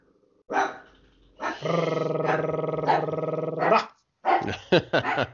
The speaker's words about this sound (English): Rare appearance from the dogs. They liked it too. Perfect time. Perfect timing. Yep. Tia, knock it off. Stop it.